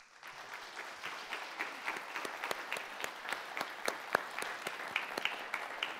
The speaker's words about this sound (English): Let's give her a big hand. This is her first year to do it. She's doing a phenomenal job.